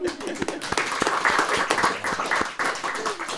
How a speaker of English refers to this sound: I reckon that's an excellent spot to just pause for a minute, and we might give the speakers a round of applause.